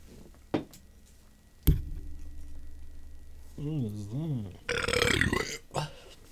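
A single drawn-out burp about a second long, its low croaking pitch wobbling up and down, preceded by a couple of sharp clicks and followed by a brief burst of hissy noise.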